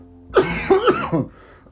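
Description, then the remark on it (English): A short run of about three harsh, throaty coughs packed into roughly a second, fairly loud and raspy, followed by quiet background noise. “There's a cough.”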